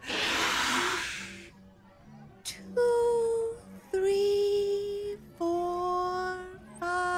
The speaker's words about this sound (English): Now, kids, I want you all to go through my breathing exercises with me.